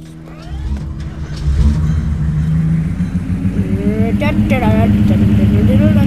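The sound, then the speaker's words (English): A video game jeep engine drones loudly and steadily, its low rumble rising in pitch as it revs up partway through, with a person talking over it near the end. “I'm in a jeep.”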